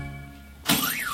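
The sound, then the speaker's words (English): A low steady hum gives way to a sudden, loud crash of shatterproof glass shattering, a bright burst of breaking fragments followed by a wavering high ringing tone that trails off. “Some shatterproof glass that is.”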